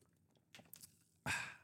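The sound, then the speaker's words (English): Someone sips a Monster energy drink: a few soft, quick slurping sips, a brief pause, then a louder breathy exhale of relief. Nobody speaks. “Hold up, I need a sip of Monster to talk correctly.”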